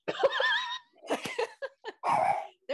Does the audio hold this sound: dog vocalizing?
yes